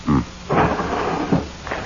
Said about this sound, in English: Open drawers. Have one open when she enters.